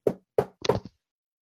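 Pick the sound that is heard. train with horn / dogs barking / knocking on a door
knocking on a door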